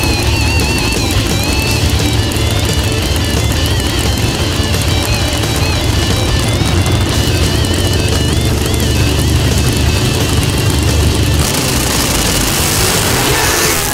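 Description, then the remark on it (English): Loud, roaring Pro Stock Motorcycle drag-racing engines in an NHRA final round, two bikes launching with identical reaction times and screaming down the track, a dense sustained howl with rising whine that shifts and thins toward the end; Andrew Hines wins at 6.845 seconds, 185 mph. No voices. “They both leave with identical reaction times as they head down the racetrack.”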